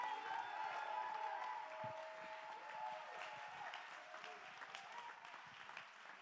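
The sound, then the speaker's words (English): An audience claps hands to give God praise, in sustained, dense applause, steady and fairly loud throughout, with faint tonal sustained notes like music underneath and scattered voices in the crowd. “Clap your hands. Give God the praise.”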